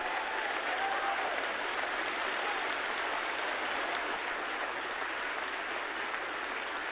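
A church audience in the sanctuary of First Baptist Church Dallas claps steadily and continuously, a dense, even wash of applause that holds at the same level for several seconds without a break or any voices over it.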